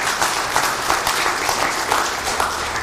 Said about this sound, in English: And so I thought that was something worth celebrating today. Don't you? Let's give a round of applause just for...